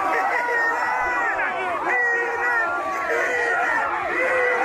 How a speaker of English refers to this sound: Hold on. Take it all in here. There is an eat it chant going on as a guy's about to eat horse manure. I mean, listen to that scream at the end right there.